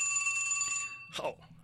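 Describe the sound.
A mobile phone rings with a steady electronic tone that holds for under a second and then cuts off, followed by a brief burst of voice or movement.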